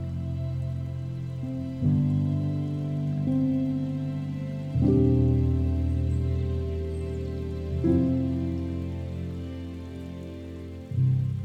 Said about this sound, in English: As the water sounds play, remember there is no agenda here. So let go of any thoughts as they arise and find your way back to your breath as the water sounds calm you down.